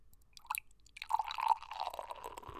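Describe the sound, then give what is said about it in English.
A couple of soft clicks, then beer is hard-poured, glugging and splashing into a glass, building into a steady fizzing, foaming rush that raises a large head of foam, lasting a second or two with no talking. “This is going to be a hard pour.”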